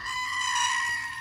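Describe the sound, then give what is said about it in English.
A screaming goat sound effect: a goat lets out a loud, sustained, shrill scream, a single continuous bleat lasting over a second with strong harmonic tones and no talking. “The screaming goat.”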